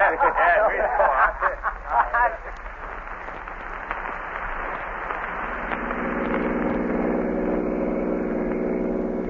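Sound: car engine running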